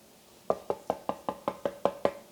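Nine quick, evenly spaced knocks on a door, each a sharp hollow rap with a short ring. They come in a steady rhythm, clear, with no voices.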